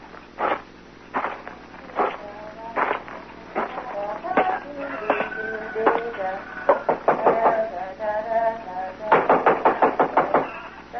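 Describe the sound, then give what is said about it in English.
Knocking on a house door: a few spaced single knocks, then a quick run of sharp raps near the end. Clear, with voices talking in between. “stop that. Don't be knocking.”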